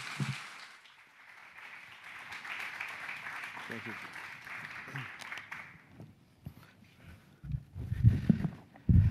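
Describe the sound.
An audience in a church applauds steadily for several seconds to welcome a pastor as speaker, a dense crackle of many hands that gradually thins and fades out, after which a single voice speaks briefly.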